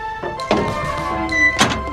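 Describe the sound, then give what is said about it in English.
A lap bar in a dragon car of a ride is pulled down and locks with a couple of dull thunks as the ride starts, heard over a steady hum of ride machinery with sustained tonal drones. “Pull down the lap bar. The ride's starting.”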